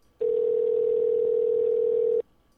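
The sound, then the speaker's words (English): A single steady telephone ringback tone of an outgoing call sounds for about two seconds, loud and clear over a line, then stops into near silence. No voices are heard. “I'm giving him a call. It's ringing.”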